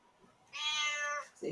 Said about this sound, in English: No, she good. She's very vocal. Meow. Meow.